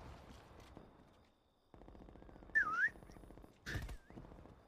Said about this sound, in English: 6 seconds and we get a whistle.